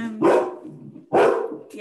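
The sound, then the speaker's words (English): Two loud, sharp dog barks about a second apart, with the start of a third at the very end; a voice is faintly present just before the first bark. “It wouldn't be a podcast without a dog barking.”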